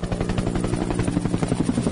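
A helicopter flies by, its rotor blades thumping in a fast, steady chop over a low engine drone, loud and continuous without any voices.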